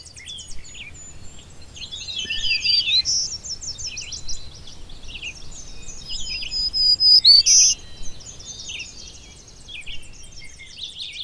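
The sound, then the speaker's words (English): A black-throated green warbler sings a series of thin, buzzy high-pitched phrases, repeated several times over a soft outdoor background with other faint bird chirps and insect hum. “That was the black-throated green warbler.”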